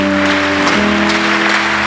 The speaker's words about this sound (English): If you are clapping, clap properly.